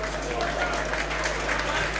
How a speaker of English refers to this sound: And he's going to be replacing Elliot Lee. Wrexham fans stand to applaud. Another entertaining performance. Jordan Davis comes on.